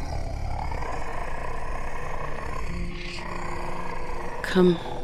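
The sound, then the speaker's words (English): A creature's slow, moaning roar: a deep, sustained rumbling drone that swells midway and ends in a brief, louder groan. “It opened its mouth and let out its slow moan.”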